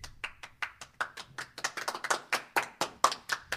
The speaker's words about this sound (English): Isn't that lovely? You get a round of applause. Do you love the applause